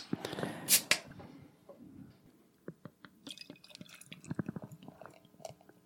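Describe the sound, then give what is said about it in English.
A brief rushing splash of beer from a bottle packaged on July 2nd, 2013 into a glass opens, followed by scattered light drips, soft fizzing crackles and small clinks at a low, quiet level, with no voices. “So while we're pouring this beer, I recall the fact that more than 80% of this beer is”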